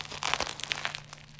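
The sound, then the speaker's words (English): Crisp, crackly crunching of someone biting into crunchy bread: a quick cluster of brittle bursts in the first second, then softer crackles tapering off, with a low steady hum underneath and no talking. “Excuse me for my crunch. This is really crunchy bread.”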